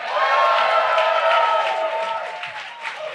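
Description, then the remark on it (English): A comedy show crowd bursts into loud, sustained applause for themselves, mixed with cheering and shouts, a dense wash of clapping that stays steady before easing off slightly toward the end. “Give it up for yourself.”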